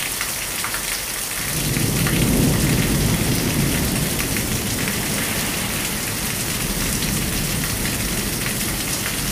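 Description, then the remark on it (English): Steady heavy rain hisses throughout while a deep roll of thunder swells up after a second or two and rumbles on for several seconds before fading back under the downpour. “storm is coming.”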